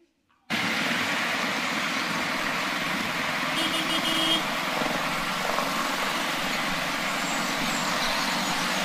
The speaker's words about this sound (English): Thank you. That actually is traffic from Mumbai, if anyone's interested.